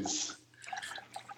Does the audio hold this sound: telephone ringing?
no